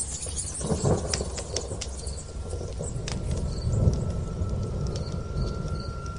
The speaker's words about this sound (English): Growing up, I've always loved thunderstorms. There's something about heavy rain, the boom of thunder, the flashes of lightning that grips a very primal fight-or-flight fear in me. And I live for every second of it.